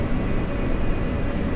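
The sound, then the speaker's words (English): A small airplane engine roars during an attempted takeoff, in a steady, dense drone with a heavy low rumble and a faint high whine running through it. No one speaks. “I can check in about a minute, because I'm about to try and take off.”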